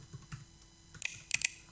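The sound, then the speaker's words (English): Several crisp keyboard keystrokes click in an irregular quick burst, fairly quiet, with a few sharper taps near the end and no voices, as a password is typed for a new volume in Apple's Disk Utility on a computer. “So I'm going to type in a password.”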